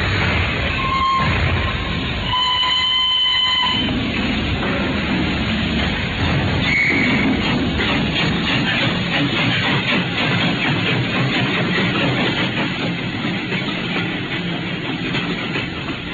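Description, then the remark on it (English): A steam train pulls out of Paddington station amid loud, steady rumbling and rattling, with a brief whistle sounding early on, then a continuous rhythmic chugging and clatter that carries on to the end. “we shall meet at the 10:30 train from Paris”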